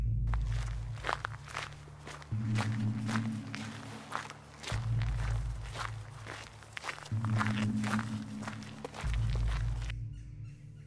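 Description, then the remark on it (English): Hurried, frantic, irregular footsteps walk toward a van with both doors open, thumping in an uneven rhythm over a steady low hum that shifts pitch, the footfalls fairly loud and continuing for about ten seconds before stopping. “The steps were frantic and uneven.”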